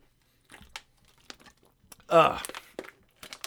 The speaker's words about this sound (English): I need a sip of water. Give me a second.